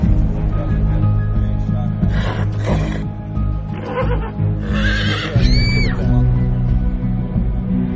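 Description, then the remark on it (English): The racehorse Home Journey, spooked by a fan in the paddock before a race, whinnies loudly and shrilly, its agitated neigh rising and wavering near the end, over a dense, steady rumble of crowd noise and low background din. “What normally would be an uneventful race was made all the more exciting when a fan in the paddock spooked Home Journey and the horse reacted wildly, knocking a couple of women to the ground in the process.”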